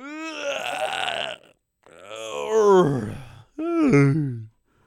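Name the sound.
exaggerated loud yawn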